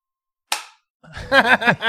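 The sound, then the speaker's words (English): A single sharp shot from a SIG pistol cracks out with a brief ringing decay, then after a short silence a loud, wavering voiced sound rises and falls several times. “You got to cock it all the way. I did. It's a SIG.”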